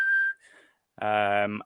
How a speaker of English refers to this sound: So like sine waves and white noise, which sine wave is obviously like the pure tone, like a whistle, right?